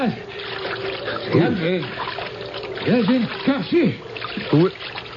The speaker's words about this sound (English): There was someone in the water swimming towards us.